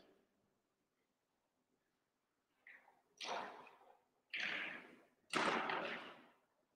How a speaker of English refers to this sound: I can hear a couple of pews just sort of creaking.